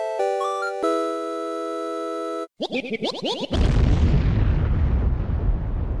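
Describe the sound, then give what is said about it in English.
A steady synthetic tone and a quick burst of warbling chirps lead into a loud cartoon bomb explosion, whose crackling, rumbling roar slowly fades over the last few seconds. No one speaks. “Maybe the sound of like a, you know, like the explosion”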